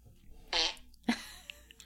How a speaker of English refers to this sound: There's actually a lot of them. Yeah. I think I downloaded the downloaded the app titled Fart World. Yeah, you did. And it has a number. I haven't tried number 20 yet.